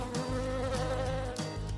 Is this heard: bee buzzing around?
yes